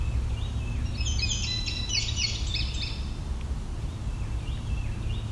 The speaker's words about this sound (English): There's a Carolina wren.